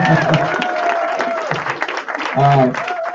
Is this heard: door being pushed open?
no